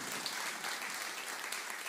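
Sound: audience applause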